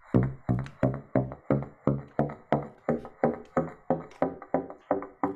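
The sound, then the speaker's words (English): A chromatic scale from a low B up to an F sharp played on a woodwind without a reed, by slapping the tongue against the end: about sixteen short, hollow, pitched pops in a steady even rhythm, each note stepping slightly higher, with no talking. “I just played a chromatic scale from a low B up to an F sharp without a reed.”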